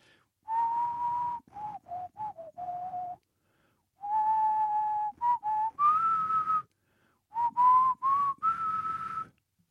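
person whistling a tune

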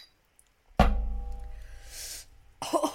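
shot glasses clinking

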